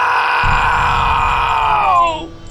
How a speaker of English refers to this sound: Jack's shrill scream erupted from his shriveling frame.